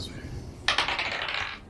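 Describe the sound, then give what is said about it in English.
A quick clatter of dice tumbling and bouncing across a tabletop for a deception roll in a tabletop role-playing game, starting abruptly and rattling for about a second before settling, with faint low voices murmuring underneath. “You switched dice to make that roll.”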